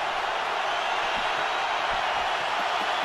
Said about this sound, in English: And here, Willie Nylander, a 40-goal scorer for the first time in the regular season, has his first in the postseason. 14th in his career, and the Maple Leafs are back within one. And this crowd is revved up.